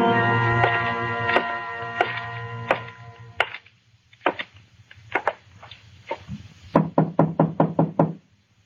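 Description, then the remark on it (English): Knocking on a wooden door: scattered firm raps, some in pairs, building to a rapid, insistent burst of about seven knocks. A sustained musical tone lingers under the first few seconds. “Open the door, Carter. I want to talk to the girl.”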